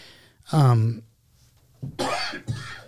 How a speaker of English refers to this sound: Sorry. I had a cough.